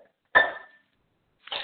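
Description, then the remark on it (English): Two bursts of metal utensils clattering in a kitchen drawer as someone gets something out of it, each with a bright ringing tone that lingers briefly, separated by about a second of silence. No one speaks. “No, I was getting something out of this drawer.”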